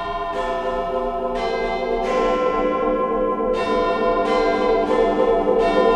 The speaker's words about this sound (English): I hold tight to an iron bar behind me, fix my gaze on the hands of Big Ben. Behind me, the busy morning commute as chimes strike a quarter to ten.